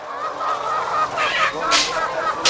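A dense, continuous chorus of about 9,000 laying hens in cages stacked in six rows in a barn on a German farm, clucking and squawking at once, fairly loud, with sharper cries breaking through the steady din and no voices.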